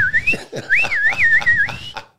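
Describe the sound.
A person whistles a short, lilting tune, the clear tone gliding up and down between notes over about two seconds, with faint accompanying sounds underneath.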